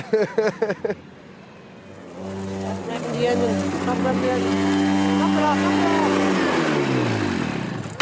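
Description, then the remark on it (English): A brief voice, then a loud engine revs up and holds a steady high roar for several seconds before the pitch starts dropping off at the end. “What are you putting revving it for?”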